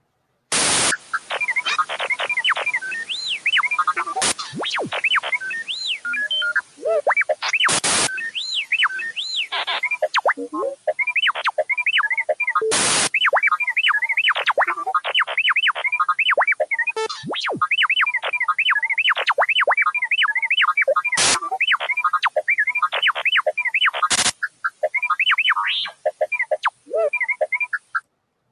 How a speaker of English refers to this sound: Dang, that's a long one. That's a lot of R2-D2. That's a lot of R2. And some static, too.